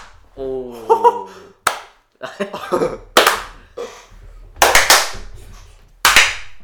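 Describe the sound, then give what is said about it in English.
Several loud, sharp hand claps land a second or so apart, unevenly spaced, with brief bursts of voices and laughter between them, as people clap to sync a recording. “We've got to do the clap thing.”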